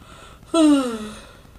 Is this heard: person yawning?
yes